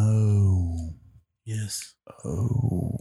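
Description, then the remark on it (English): A person yawns away from the microphone: a drawn-out, voiced yawn rises and trails off over about a second, followed by a short breathy exhale and then more vocalizing, moderately loud. “So I don't yawn into the mic.”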